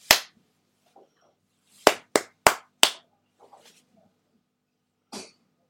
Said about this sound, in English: My hand clap is much nearer to the microphone than the workmen outside are. They're on the other side of a closed window.